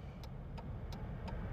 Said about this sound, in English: Yeah, this whole tire change is a lot. That was a truck. That wasn't even the freaking tow guy.